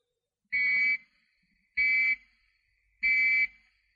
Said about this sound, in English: Next, the fallout warning. When fallout is expected, you will hear three bangs in short succession. They will be sounded by means of maroons like this. Or you may hear three gongs like this. Or three whistles like this.